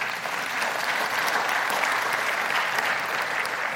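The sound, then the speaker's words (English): A crowd applauds steadily, a dense, even wash of many hands clapping at once, sustained at a fairly loud level with no speech over it for the whole stretch. “So if you need to talk more about this, okay, go ahead, clap.”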